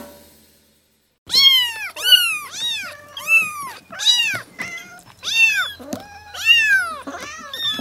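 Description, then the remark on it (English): Several elderly cats meow over and over in quick succession, loud, with long drawn-out wavering cries overlapping in a continuous chorus and no talking. “Here we have various cats that appear elderly.”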